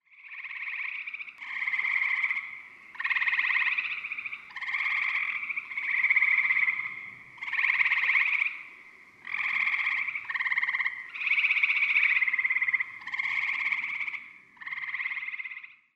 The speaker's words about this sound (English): Also calling are male gray tree frogs with an incredibly loud bleating trill for such a small animal.